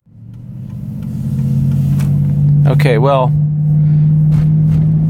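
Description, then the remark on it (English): A steady car engine rumble in traffic drones loudly from start to finish, swelling slightly early on, with a man briefly speaking over it. “my brain went blank there for a moment because I was dealing with traffic issues.”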